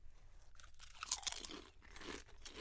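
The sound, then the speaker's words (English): Crunching and chewing on Donair sauce-flavoured potato chips, a steady run of crisp, crackly bites with bright high-pitched snaps, continuing for a few seconds with no talking. “I'm continuing to eat them just because I want my mind to be changed.”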